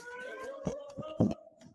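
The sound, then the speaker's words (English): A steady, high electronic alarm tone wails continuously overhead in a school building as police officers rush from classroom to classroom searching for an attacker, with a few dull thuds and knocks breaking in over it. “They rush classroom to classroom trying to find the attacker while an alarm wails overhead.”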